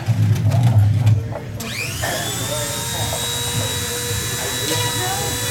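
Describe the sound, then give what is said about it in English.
A Dremel rotary tool whirs up to speed after a second of low rumbling, then holds a steady, high-pitched whine with buzzing overtones as it cuts into a Nintendo Game Boy, with faint voices underneath. “Nintendo Game Boy vs. Dremel”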